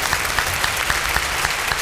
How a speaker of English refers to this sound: All this wonderful applause and fanfare for the great Bernard Fox. It's called talent.